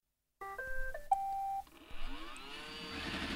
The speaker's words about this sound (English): I have a smart vacuum here. Yes, I do vacuum my shed. Weird, I know. Tell Roomba to start.